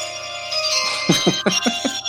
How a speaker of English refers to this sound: Some low tech stuff for you guys, but it had to be done. That is now my ringtone for the next week or so. I think it'll stay around.